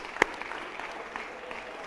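An audience clapping their hands together in thanks to the Lord, a dense, steady wash of many overlapping claps, fairly soft overall, with one sharper, louder clap standing out near the beginning.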